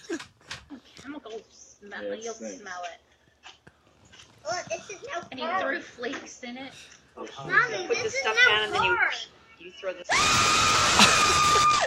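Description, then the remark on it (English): Excited voices talk and exclaim over one another in a clown prank video, then a woman in pink lets out a loud, piercing scream that carries on for the last couple of seconds. “It's the lady in the pink that screams.”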